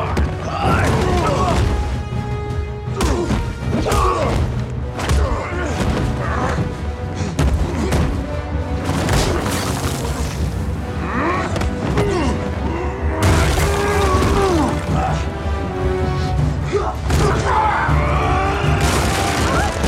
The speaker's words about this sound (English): It's great because the material, the building material was great. You know, we have glass wood and we have concrete pillars that are being punched through.